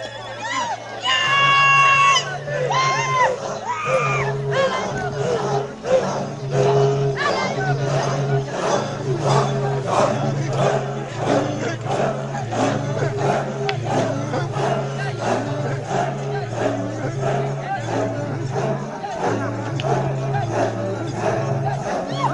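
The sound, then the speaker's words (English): Villagers of a people group living in a crater sing and chant together, thanking God for a well drilled for 10,000 people, in a steady rhythm, loud and continuous, with a low droning tone running underneath and occasional shouted calls standing out. “And that's what they're singing. They're thanking God that he showed up and changed everything.”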